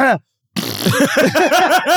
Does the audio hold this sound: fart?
yes